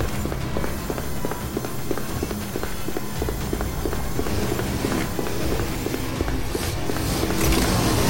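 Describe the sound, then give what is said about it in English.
Quick, evenly spaced footsteps run steadily across a hard surface, fairly loud, as someone hurries into a chamber, with a dense rumbling background of clattering noise throughout and no voices. “Switching focus, I hurried into the distant chamber, where the clamor of battling metallic giants rang out.”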